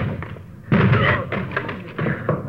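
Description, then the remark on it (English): Heavy thuds as police officers force a locked door open: three loud, booming impacts spaced roughly half a second apart, each with a splintering, rattling tail, and no voices. “Door's locked. Let's hit it.”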